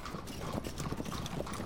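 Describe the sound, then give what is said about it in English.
Horse hooves clip-clop steadily on a hard street, pulling a cab bound for Mayfair at a brisk walking rhythm, fairly loud, with no voices over them. “Now then, cabby. Mayfair, and don't spare the horses.”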